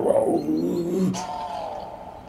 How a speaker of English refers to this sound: As you conjure a skill of your hand and it kind of grasps onto the owlbear's flesh, leaving it like a necrotic burn. 7 damage. 7 damage, alright. So let's add a growl.